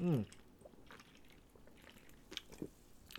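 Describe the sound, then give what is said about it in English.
Someone takes a drink: a brief low throaty sound, then quiet wet mouth clicks and a couple of soft swallowing gulps, with no talking. “I'm just going to take a little drink here in between and then talk about the Forbidden Door, as it were, a little bit”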